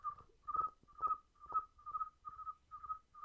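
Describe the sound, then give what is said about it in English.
A person whistles a steady run of about eight short, high chirps in an even rhythm, imitating a cricket's call. The whistling is clear, with no talking. “I can whistle like a cricket.”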